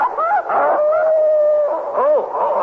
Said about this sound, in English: Did I hear a dog up here? What, a dog? Oh, no, that's me. I've got a cold.